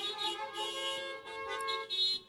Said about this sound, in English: That's some good honking. That's some good honking.